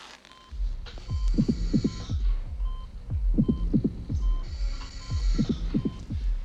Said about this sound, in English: Nurse, why don't you listen to their hearts and tell me what you hear? Normal to me, doctor. No, that's impossible. They each have 2 distinct heartbeats.